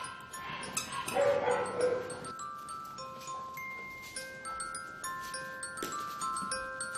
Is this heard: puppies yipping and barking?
yes